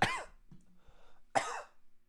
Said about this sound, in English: Every time I say, oh, the cough is basically gone, it comes back up into my throat and I have to cough immediately. It's almost like my body's telling me to shut the fuck up and just let it ride out.